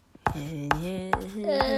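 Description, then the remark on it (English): A marker squeaks across the smooth surface of a door as someone writes and draws smell lines and hearts on it: four sharp taps at an even pace, joined by a sustained, wavering squeaky tone, fairly loud, with no talking. “With my trusty marker, I will write down, let's see.”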